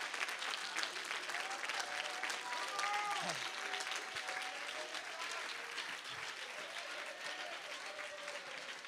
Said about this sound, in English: I wish I could hear a hand clap that believed in faith.